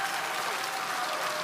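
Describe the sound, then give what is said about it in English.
A crowd claps steadily, a dense wash of many hands with no distinct beats, holding an even level throughout the short stretch with no voices on top. “And do not applaud for him.”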